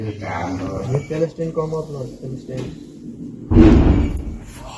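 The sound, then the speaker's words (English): Recorded inside a shelter during a bombardment: people talk for a few seconds, then a single loud, heavy blast like a bomb explosion booms out and rumbles on for about a second before slowly fading. “We heard the sound of helicopter planes and missiles and just bombarding, sound of guns, sound of bombs.”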